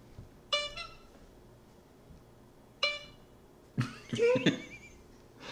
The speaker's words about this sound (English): Oh, you know what? Ooh. We got our own horn.